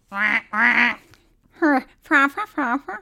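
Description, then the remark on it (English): A duck-call horn blows loud, nasal quacks: two drawn-out honks, a pause, then four quicker quacks in an uneven burst. “I haven't done the horn in a while.”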